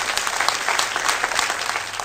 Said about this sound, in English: Okay, her campaign staff applauding there,